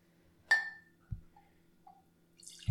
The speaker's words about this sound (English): No, like, just like this. Like here, you pour your own glass then, girl. Just like this.